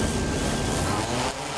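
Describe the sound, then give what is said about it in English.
A Chula Vista Police Department drone, a low-flying drone serving as a first responder, launches straight up with a steady, loud mechanical whir and a thin high whine running through it, easing slightly just before the end. No one speaks. “He's just going to launch, go straight up.”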